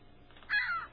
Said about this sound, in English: No. No, it's a seagull.